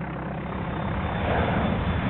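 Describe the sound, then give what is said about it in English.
An airplane engine roars steadily in flight, a loud, dense, continuous drone that swells slightly toward the end, with no voices over it. “They hit our engine!”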